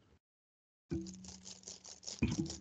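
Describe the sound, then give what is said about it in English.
Typing on a computer keyboard: a quick, fairly steady run of light clacking keystrokes starting after a brief silence, with a low hum running beneath and a slightly louder burst near the end. “Do you want to hear a keyboard?”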